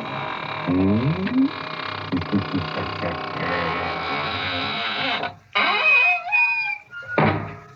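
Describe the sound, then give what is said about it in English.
A door creaks shut with a long, drawn-out squeak, its hinges groaning and wavering in pitch over several seconds before a brief final bump. Loud, with no talking. “And now it's time to close the squeaking door, so good night.”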